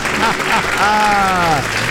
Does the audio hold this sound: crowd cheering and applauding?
yes